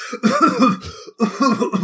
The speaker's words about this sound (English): Far too much pyro is going off. The room is just filling with smoke. I'm coughing and wheezing my way into the ring.